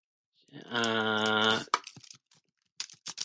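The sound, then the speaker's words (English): A drawn-out, voiced groan-like tone is followed by a scattering of sharp, irregular clicks of keyboard typing, moderately loud, with short pauses between bursts. “Oh, typing? Well, I'm just confirming.”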